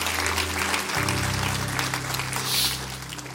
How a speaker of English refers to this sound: Clap your hands real big. Come on, clap your hands.